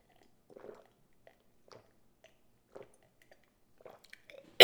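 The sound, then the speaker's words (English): Soft sips and gulps come at uneven intervals, with small wet mouth noises between swallows, ending in a sudden loud, sharp burst of sound. “sorry, I need to get a drink really quick.”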